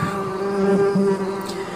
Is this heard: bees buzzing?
yes